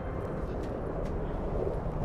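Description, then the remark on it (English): A steady, low rumbling drone of an airplane passing overhead, continuous and even in loudness throughout, with no voices present. “An airplane. I haven't heard one of those in a while.”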